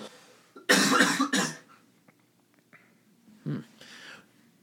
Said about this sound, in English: sorry, I got a cough, hang on.